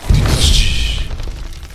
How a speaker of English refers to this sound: Crashing through the branches in front of you, you see Bane on the back of the Gloomstalker, wrenching his right claw free from some of the harness that it had gotten caught on.